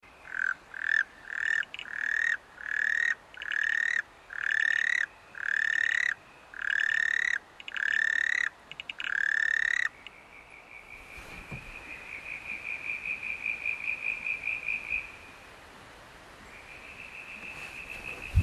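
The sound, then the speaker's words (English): Southern brown tree frogs (Ewing's tree frogs), a common tree frog, calling in Far East Gippsland, starting with a rapid series of about ten loud, evenly spaced rising pulsed notes, then a fainter, longer trilling call continuing in the background. “What sort of frogs are they? They're Ewing's tree frogs.”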